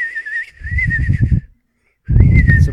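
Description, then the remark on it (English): A person imitates a sparrow call with a high, wavering whistle over breathy, buzzing noise, loud, in two bursts separated by a brief pause. “Why don't you make your best sparrow noise”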